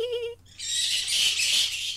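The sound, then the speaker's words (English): Bat calls: a brief wavering, whistle-like tone, then a sustained burst of shrill, hissing screeches and chatter, high-pitched and fairly loud, with no talking. “What is that? A bat? Those bats, yeah, I know.”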